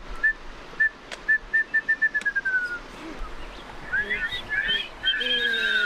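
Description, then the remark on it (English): A former biology teacher whistles a wrentit's call for a group of kids: a string of short, clear notes that speed up into a quick trill, then several of the kids join in with overlapping attempts. “He warms the kids up, teaching them the bird call for the wren tit.”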